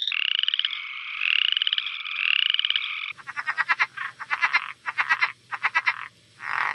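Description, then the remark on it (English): Chorus frogs calling at night in a dense, continuous trilling chorus, followed by a series of rapid, rising chirps repeating in quick bursts, fairly loud with a faint low hum beneath. “And I've told people like, oh, those are like chorus frogs or like whatever types of frogs out there.”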